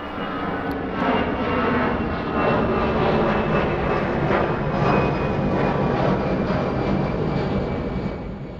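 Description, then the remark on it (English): A jet airplane roars in to land, a loud, steady engine rumble with a high whine layered on top, sustained for several seconds before easing slightly at the end. No one speaks. “When I say shit, let's have like a sound of a plane landing.”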